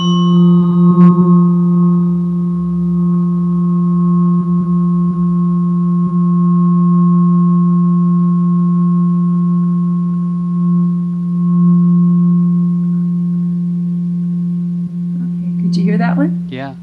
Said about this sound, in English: I've also got the solfeggio tuning forks, and I'm going to look for the F in there. These are supposedly all ancient healing tones, and I'm coming up with the F. For example, this is one that I love. It's very low. It's 174.